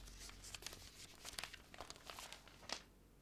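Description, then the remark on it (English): A paper note about 4 inches wide, with black ink markings on it, being handled, with soft irregular crinkles and rustles building into a few sharper crackling bursts, no voices present. “I'm looking at a piece of paper, maybe 4 inches wide, with black ink markings on it.”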